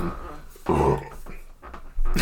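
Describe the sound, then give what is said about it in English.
A single loud, low, guttural burp rumbles out for a moment, followed by quieter throaty noises and a brief low grunt at the end. “You gotta drink a burp, man.”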